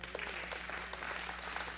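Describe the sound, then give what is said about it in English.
An audience claps together in a steady, dense wash of applause that holds an even loudness for a couple of seconds, with no voices rising above it. “You can clap for that.”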